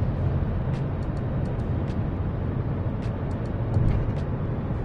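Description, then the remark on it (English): Steady low road rumble from inside a car moving along a major road after getting out of a traffic jam, a constant engine and tyre drone with faint high clicks and ticks scattered over it, no voices. “We are no longer, as the title says, stuck in a traffic jam. We are just commuting at this point.”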